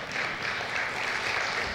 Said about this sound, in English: What a joy to hear from the children, right? And, you know, yes, you can clap for our children.